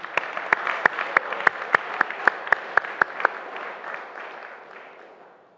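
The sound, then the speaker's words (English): A crowd of men applauds the women of the Bread of Life ladies' meeting with a steady wash of clapping, while a few sharp, evenly spaced claps ring out above it for about three seconds before the applause thins and fades away. “Men, let us clap for our ladies.”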